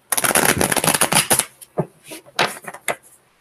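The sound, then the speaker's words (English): A deck of tarot cards is shuffled: a rapid, dense riffle of crisp flicking for about a second and a half, then a few slower taps and slides as the cards settle. “Okay, one more shuffle for Aries.”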